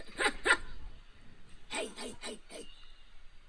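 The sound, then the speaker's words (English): A person imitates a dog barking with harsh, raspy vocal bursts: two quick yaps, a short pause, then a rapid run of four or five more, moderately loud. “So this is this noise, those dog noises, that's a person.”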